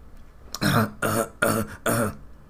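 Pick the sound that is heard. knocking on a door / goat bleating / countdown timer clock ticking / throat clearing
throat clearing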